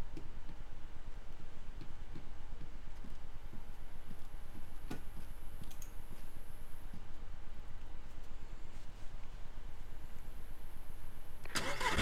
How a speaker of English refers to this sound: Don't worry about the startup noise of the chopper. I'm guessing that's just a placeholder, but...